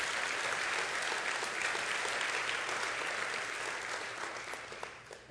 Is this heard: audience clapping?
yes